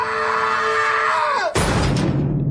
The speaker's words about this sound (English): Here's the scream death of that dude.